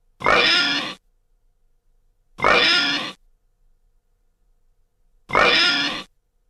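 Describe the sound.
A person imitates a pig with three loud, drawn-out snorting oinks, given as a score, each under a second long and separated by pauses of a couple of seconds, with no talking in between.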